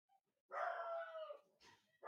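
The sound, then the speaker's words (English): A dog lets out a long, drawn-out bark that trails into a whine, followed by a shorter yelp and the start of another bark, with no one speaking. “I gotta let them know they should probably take those dogs out.”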